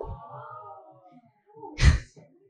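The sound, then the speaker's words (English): An audience gasps in one sudden, breathy burst near the end, preceded by a faint, low murmur of room noise. The reaction is brief and moderately loud, with no speech. “Does anyone not know why people are laughing or gasping?”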